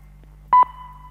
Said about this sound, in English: At the signal... It will be 21, 13, and 40 seconds.